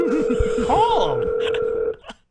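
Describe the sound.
A steady telephone tone hums through a speakerphone for about two seconds while a voice talks over it, followed by a few short beeps as the line cuts off, during a call to the Los Angeles Chargers.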